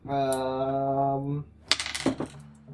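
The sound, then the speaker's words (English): Two dice clatter and tumble across a hard tabletop in a quick burst of small clicks, preceded by a steady hummed or droning tone that stops just before the roll. “Here's my two dice.”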